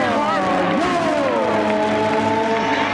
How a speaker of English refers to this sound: it's the sounds of the Indianapolis 500 that gets this crowd fired up